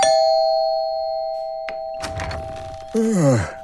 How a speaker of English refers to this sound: I went up to apartment 27 and rang the bell.